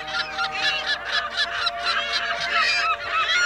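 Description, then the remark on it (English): A flock of California gulls (Larus californicus) calling together, a dense, continuous chorus of overlapping raucous cries pulsing in quick bursts, loud, with no voices. “These were California gulls, Laris californicus, year-round residents of the Salt Lake area in Utah.”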